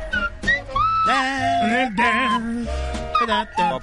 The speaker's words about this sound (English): Give me a little something. Okay. Come on, you got the washboard? Get the slide whistle. Let's go.